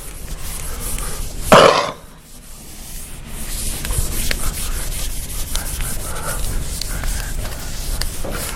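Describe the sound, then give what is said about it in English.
Scratchy rubbing strokes of a marker or chalk on a board as a diagram is drawn, with one louder squeaky swipe early on, then a steady run of softer, uneven drawing strokes. No one speaks. “Somewhere along the way, let me draw you one here.”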